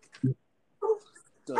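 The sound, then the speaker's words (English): A dog lets out three short, sharp barks and yips in quick succession, loud, with brief pauses between each outburst. “Look at this damn dog.”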